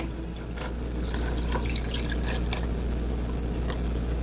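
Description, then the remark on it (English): A cocktail of coconut rum and triple sec pours steadily into a glass for a few seconds, a continuous splashing trickle with bright little drips and gurgles riding on top, no voices. “Pour this in our glass.”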